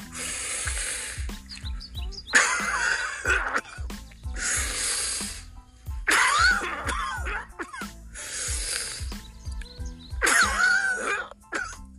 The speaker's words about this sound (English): So alternate breathing and coughing, and keep doing that every 2 seconds, like so.